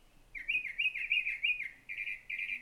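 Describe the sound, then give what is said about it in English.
A bird sings a clear, whistled phrase of about seven swooping, mid-high notes in quick succession, steady and fairly loud, with no voices. “I love this one because he's just got so many different songs, and there's this really kind of lonely, cool quality about his call that it lulls me to sleep.”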